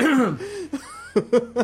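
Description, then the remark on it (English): A voice makes a few strained, throaty sounds, then breaks into three short, sharp coughs in quick succession, fairly loud. “I just started coughing.”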